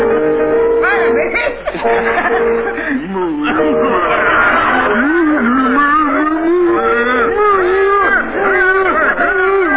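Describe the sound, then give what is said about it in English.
Several people loudly imitate cows, overlapping in long, wavering moos with sliding pitch, mixed with chuckles and laughter, continuous throughout. “And I want you to specify their animals. Cows.”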